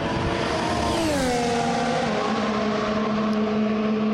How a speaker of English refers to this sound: I'm in the pit lane, and the noise you've just heard is Lewis Hamilton zipping past the pits in his all-new Silver Arrow, the car that he hopes will take him to an 8th world title this season.